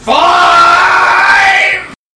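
A single loud, sustained scream, played as a sound effect, rises sharply at the start, holds a strained high pitch for almost two seconds, then cuts off abruptly into silence.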